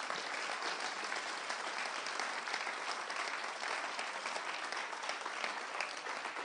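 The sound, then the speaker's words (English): A church audience claps their hands as a hand-clap offering to the Lord: a dense, sustained burst of applause, many hands at once in steady, loud clapping for several seconds with no speech. “Give the Lord a hand clap offering.”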